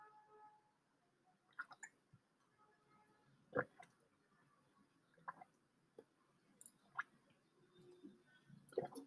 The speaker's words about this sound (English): Anyways, let's get deeper into the topic of mental health. And we'll do that after I take a sip of my water.